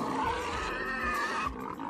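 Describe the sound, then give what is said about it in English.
A loud, continuous high-pitched squealing, like a bunch of angry pigs, apparently a voice imitating pig squeals, holding steady for almost two seconds before tapering slightly at the end. “You're squealing. It's like a bunch of angry pigs.”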